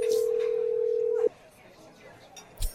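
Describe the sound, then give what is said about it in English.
A single steady ringback tone from an outgoing phone call hums for just over a second and cuts off, leaving quiet line noise and a brief soft thump near the end. “Connecting. She's not going to know the number. What number are you calling?”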